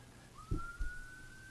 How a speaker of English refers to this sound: Here, I'm hearing a siren, and I'm not sure if it's where I'm at or if it's it's where I'm at. It could be the fire station across the street. I'm across from a firehouse here in San Jose, and they might be scrambling right now